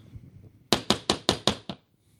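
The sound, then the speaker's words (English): Six quick, evenly spaced knocks on a door, sharp and fairly loud, rapping out in a steady burst and then stopping into near silence. “Oh, wait, somebody's knocking on the door of this Zoom.”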